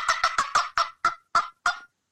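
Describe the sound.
Turkey call cutting: a string of eight sharp, loud, high clucks, rapid at first and then spacing out slightly before stopping. No one speaks.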